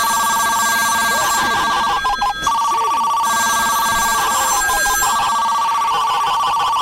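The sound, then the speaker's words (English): Several telephones ring at once on call screener lines in a call screener room, a loud, overlapping electronic trill that never lets up, a busy wash of bells layered together with no voices. “Dude, I got to free up some of these lines. There's lights everywhere.”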